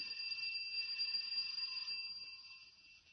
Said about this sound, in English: Well, looks deserted, all right. I'll try the bell.